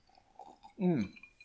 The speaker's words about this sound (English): But I mean, maybe one more glass is all that's left in the bottle. That's freaking me out. Oh, not good. With that, I'm going to have a sip.